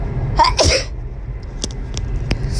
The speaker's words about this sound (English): Uh-oh, got to sneeze again.